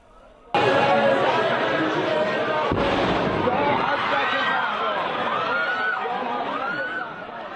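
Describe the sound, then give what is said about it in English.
A sudden loud blast, one of two explosions near the grave of Iranian military commander Qasem Soleimani in Iran, breaks the quiet on very crowded streets, then a crowd of voices screams and shouts in panic without pause, with another sharp crack partway through the commotion. “Screams there.”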